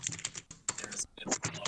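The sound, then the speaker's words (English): Rapid, forceful, angry keystrokes clatter on a computer keyboard in quick bursts with brief pauses, fairly loud, while a voice talks faintly underneath. “Well, somebody's angry typing, and I'm assuming it's not”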